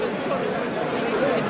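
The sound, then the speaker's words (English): A stadium crowd of football fans, including Brighton fans, cheers during a football match while the referee checks a penalty decision at the monitor, in a steady, dense roar of many overlapping voices, holding an even loudness throughout the short stretch without clear peaks. “A few Brighton fans are cheering foolishly because, well, they didn't realise he had been given.”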